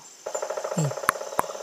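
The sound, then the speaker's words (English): A voice imitates a woodpecker with a fast, steady rattling trill of rapid pulses, a brief low vocal sweep midway and two sharp clicks near the end. “It's like the birds and the animals, the insects sound. It's the bird, the woodpecker.”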